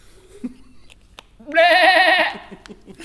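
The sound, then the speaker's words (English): A goat named Oliver lets out a single loud, quavering bleat lasting under a second, with faint scattered noises before and after it. “Trois. Deux et un goat.”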